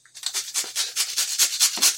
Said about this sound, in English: Begin grinding your bear root to season the water. Bear root is a very strong medicine, and the two things that people liken it to the most are almost a chili because of the spice it has, and also it's likened to maple syrup.